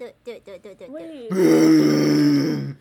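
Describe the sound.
A person imitates a bear in place of cheering during a game: a few short, choppy grunts build into a long, loud, rasping growl that holds steady for over a second before cutting off.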